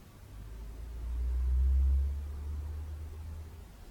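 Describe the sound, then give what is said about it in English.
A car passes outside, its low rumble swelling to a peak midway and then fading into a steady background hum. No one speaks. “Yes, the cars, they come and go.”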